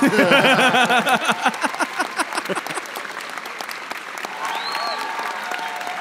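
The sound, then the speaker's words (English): A played sound effect of crowd applause and cheering, with voices whooping over steady clapping that starts loud and settles into a sustained, slightly softer roar of claps. “Can we put a cheer in here, Kyle?”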